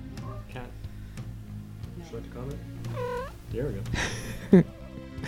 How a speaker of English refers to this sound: Yes, and we also have a cat that has wandered into the studio and has kept us company as a sort of a service animal, bringing comfort to this long but very exciting podcast.